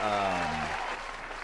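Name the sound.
round of applause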